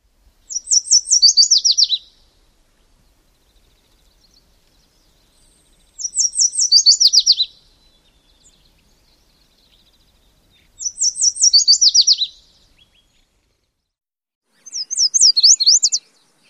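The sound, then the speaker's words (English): Four bright, sweet warbling songs from a yellow warbler, each about one and a half seconds of quick high notes, separated by silent pauses of a few seconds, clear with no other sounds. “So one more time, here are a variety of yellow warbler songs.”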